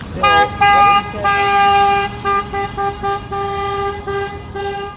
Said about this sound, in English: Yeah, vehicles honk in support.